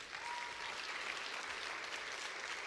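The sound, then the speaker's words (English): A steady wash of audience applause fills the space, many hands clapping together at an even level throughout, dense and continuous with no voices standing out. “Everybody give them a round of applause.”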